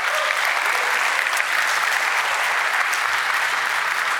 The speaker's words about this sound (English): But my children's workers out there are fantastic, and we would not run the children's ministry without them. So, yeah, let's give the children's ministry workers a massive round of applause.